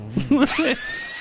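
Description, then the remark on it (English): A high, steady electric whine from belt sanders racing each other, rising slightly in pitch and holding for under a second after a brief burst of voice at the start. “I had no idea you could do that with a belt sander.”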